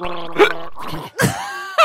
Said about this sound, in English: Gargle. He's picking up the water now, here and he's just going to give it a quick gargle.